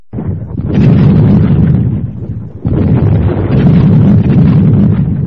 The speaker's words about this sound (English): It's supposed to be thunder, like, you know, thunder and lightning.